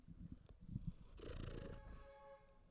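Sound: cat purring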